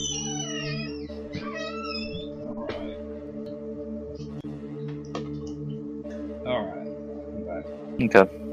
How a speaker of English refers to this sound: You get this cat out of the room. And go first. He wants to be out. He doesn't like listening to our conversation.